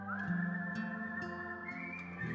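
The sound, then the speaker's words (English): A voice imitates the eerie, howling whistle of a robot-like ghost with a propeller, holding one steady high tone for a couple of seconds while lower droning pitches shift underneath, fairly loud. “The reaction it does when you trigger it is this sort of whistle.”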